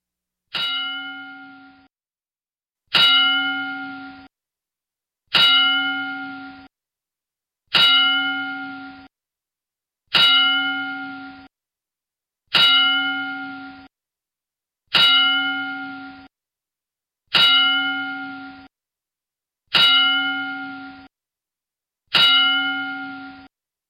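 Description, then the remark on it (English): A bell rings ten times at slow, even intervals, each strike sharp and bright with a long ringing decay fading into silence before the next. No voices accompany the tolling. It is a wrestling ten-bell salute in Virginia Beach, in honor of the victims of the Virginia Beach Municipal Center tragedy. “go ahead and give the Wrestling 10 Bell salute in honor of the victims of the Virginia Beach Municipal Center tragedy from last week here in Virginia Beach.”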